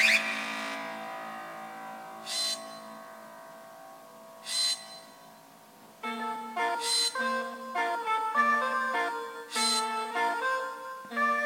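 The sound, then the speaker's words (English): Robots hum in the video game Portal 2: sustained, layered electronic tones with soft swells, then from midway a rhythmic, pulsing melody of repeated notes. No one speaks. “Even just hearing the robots hum, yeah, it brings back so many good memories of this game.”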